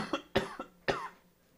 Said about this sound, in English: Oh, I'm trying not to cough up a lung, but it's okay. Ugh, it's this damn cough. If it wasn't for the damn cough, it wouldn't be so damn bad, but it is. It doesn't help that when you have to talk, it's worse.